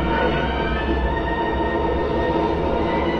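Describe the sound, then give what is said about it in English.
A steady, loud rumble of a rear-projected train running continuously in a film scene, with a dense low-end roar and faint metallic tones, no pauses or voices throughout. “So the train was rear projected.”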